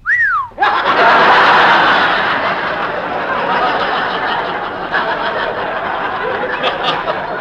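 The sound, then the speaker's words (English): A quick rising-and-falling wolf whistle at girls, then a large crowd bursts into loud, sustained laughter that carries on to the end. “whistling at girls.”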